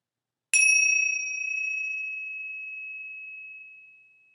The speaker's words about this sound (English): In a moment, I'm going to ring the bell. When you hear the sound, gently follow the sound until it fades away.